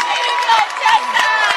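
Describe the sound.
A basketball crowd cheers in a steady, dense roar, rising to its feet as a Westwood player makes a foul shot to reach 1,000 career points, with scattered shouts and high-pitched voices rising and falling throughout.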